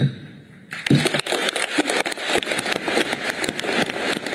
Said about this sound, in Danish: stort bifald, og sådan lød det i Dubai, da topmødets formand Sultan Al-Jaber kunne lukke 2 ugers intensive forhandlinger efter overtid